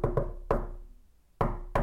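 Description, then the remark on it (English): Five firm knocks on a door in a patterned rhythm: a quick pair, a single rap, a pause, then two more. Fairly loud, with no voices. “I had a special knock me.”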